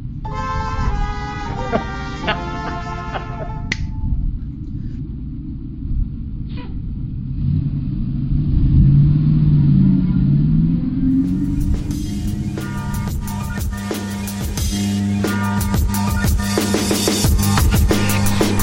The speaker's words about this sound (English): But unlike them, we're going to take the bus and go into school, and we'll make fun of them there. Get on the bus. Here we go.